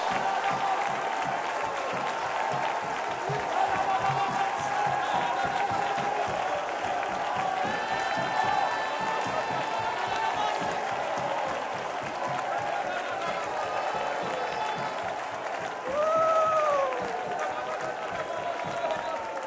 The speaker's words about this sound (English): Shout it one more time. Clap those hands one more time.